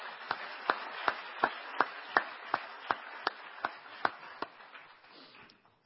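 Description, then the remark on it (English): An audience applauds promoted paramedics, a dense wash of clapping punctuated by one steady, evenly spaced run of sharp, loud claps, about a dozen, before the whole round tapers off and fades out. “Unfortunately, as you can see, the hard work never stops, and a lot of our paramedics weren't able to be here this evening, but please join me in one last round of applause for all of our promoted paramedics.”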